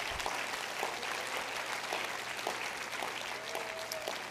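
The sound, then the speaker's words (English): A crowd claps steadily, a dense wash of many hands applauding together, with no voices standing out. “Would you clap your hands if you're looking for Jesus Christ?”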